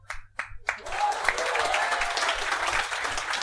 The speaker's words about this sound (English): He is good. The man of a thousand noises. The first time is clapping.